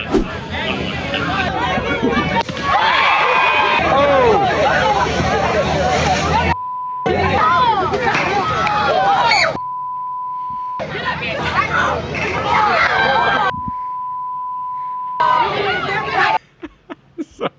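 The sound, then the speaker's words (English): A crowd screams and cheers loudly, a dense tangle of excited overlapping voices, broken into several bursts separated by short silences, with a steady high beep tone bridging the gaps, as a 10-foot alligator by an elementary school in Jacksonville is trapped and taken away. “There was a crowd, Mojo, too, and they were screaming, cheering.”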